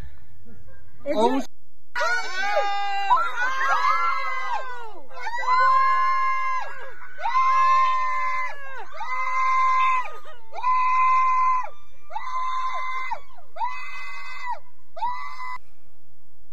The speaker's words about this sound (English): You can hardly blame the bear for running away. If I was a dude in the house and a lady was yelling like that repeatedly, I'd be running right beside the bear.